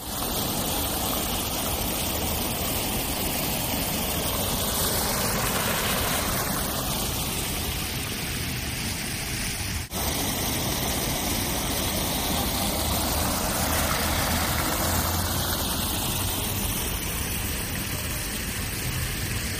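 Steady, dense splashing of an outdoor water fountain to the speaker's right, recorded with a Rode microphone while vlogging, a loud continuous hiss and patter of falling water that fills the whole recording with slowly shifting tone and no voices.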